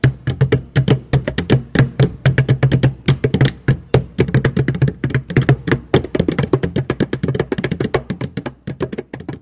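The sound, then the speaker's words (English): Fast, dense Rio samba-style percussion played with the hands as a short performance, a steady busy rhythm of overlapping taps and thumps with a deep low drum tone underneath, loud and continuous with no voices. “We couldn't let you go without a little performance from ourselves, so this is it, a taste of Rio samba style.”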